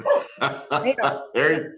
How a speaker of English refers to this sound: Sorry, my dog.